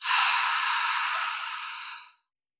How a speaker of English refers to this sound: Last time, breathe in deep through your nose and let it all go through your mouth.